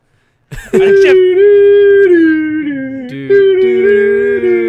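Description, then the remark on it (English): Two voices hum a harmonica-style tune in long, sustained, loud notes. One holds a steady mid pitch while a second lower voice joins and shifts between notes partway through. “can you just be you humming it?”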